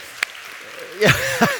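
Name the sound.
audience round of applause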